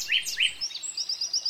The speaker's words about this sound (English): Ah, the dawn chorus. Delightful and familiar to all you early birds, and a novelty to all us night owls. From the nightingale